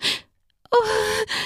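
A woman gasps sharply as her breast is squeezed: a quick breathy intake, a brief pause, then a voiced catch of breath that trails off into a softer exhale.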